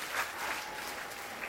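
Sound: audience applause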